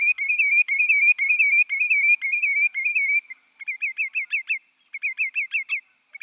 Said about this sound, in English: The musical wren-like song you just heard is that of a lesser yellowlegs, a type of sandpiper. We know lesser yellowlegs and other sandpipers for their busy foraging on mudflats and at the ocean's edge, but perhaps not for their singing.